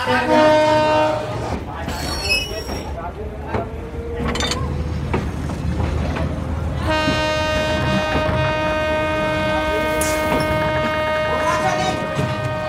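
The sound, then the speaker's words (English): A painted first-class train on Madagascar's French-built rail network rumbles steadily along the rails, with a loud, sustained horn blaring over the clatter through much of the second half. “But this train still runs.”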